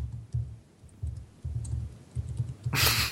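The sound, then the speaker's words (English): Rapid, uneven tapping and clicking of people furiously typing on computer keyboards to research where eggs come from, with dull thumps from the keys, ending in a brief louder rustling burst. No one speaks. “Listen to people furiously typing to research where the eggs come from.”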